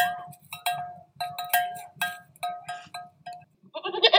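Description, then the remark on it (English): Several goats bleat in quick, overlapping bursts, a busy chorus of wavering cries with a low outdoor hum underneath and no talking; the goats are used to tackle noxious weeds in a county in southwest Colorado. “A county in southwest Colorado is working with an unusual partner to tackle the area's noxious weeds, goats.”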